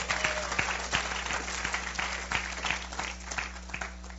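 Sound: applause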